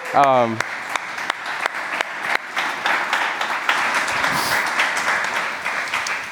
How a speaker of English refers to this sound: and I would encourage you to give them a huge round of applause.